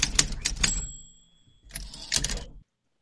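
Rapid bursts of typewriter keys clacking, with a ding-like tone ringing out mid-clip, then another quick flurry of strikes before it stops. Fairly loud, no voices.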